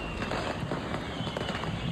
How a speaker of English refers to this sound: still a very dangerous situation since this building was loaded with fireworks. You can still hear the occasional pop and snap of these fireworks.